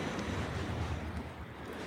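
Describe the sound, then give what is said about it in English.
Steady wind blowing across open water, a broad continuous rush with low rumbling gusts and a faint wash of surf underneath, with no voices present. “Here comes the wind, uplifting us.”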